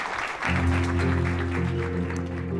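An audience claps steadily and densely, a sustained round of applause at the end of a Stanford eCorner Entrepreneurial Thought Leader Series session, while a low, steady musical drone fades in beneath it after the first half second.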